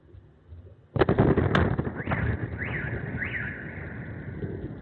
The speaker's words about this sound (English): Missile flies over. You see the explosion, and then seconds later, the sound comes back. Boom. See the explosion? And then now, here comes the sound.